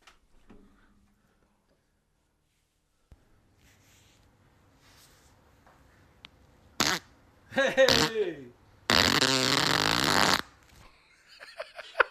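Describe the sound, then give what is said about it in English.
A recorded fart: a faint low rumble builds, then several loud, sputtering bursts, ending in one long raspy blast before things go quiet. “You gotta hear the first only fart.”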